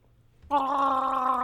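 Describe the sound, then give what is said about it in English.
After a moment of near silence, a voice bursts into a loud, sustained Wookiee-style roar while gargling water, a bubbling, warbling growl that holds steady for about a second. “What's your Wookiee impression? Let's hear it.”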